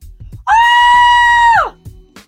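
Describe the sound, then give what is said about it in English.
A person lets out one loud, shrill, high-pitched squeal to call a dog, held steady for about a second before sliding down in pitch at the end. It's piercing, with quiet background noise around it. “Or the very widely recommended, I think professionally derived practice of just screaming in a really high pitch until they think something amazing is going on, which really sounds just like this.”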